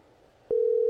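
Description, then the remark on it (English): After a half second of quiet line hiss, a loud, steady electronic ringing tone of an outgoing phone call starts and holds unbroken to the end, unanswered. No one speaks. “He's not going to answer the phone if he's driving.”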